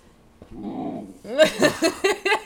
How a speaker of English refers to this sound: The noises that she makes when you try to get her off the couch are ridiculous. It's not barking, it's not growling, it's just like... Ugh. It's like if you're gonna try to take an old man off a couch.